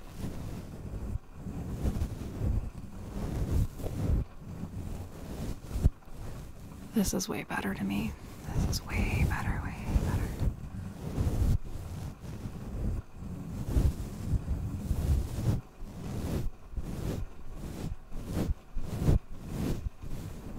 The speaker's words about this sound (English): Okay, do you prefer this type of brushing on a mic? Or this type of brushing on a mic.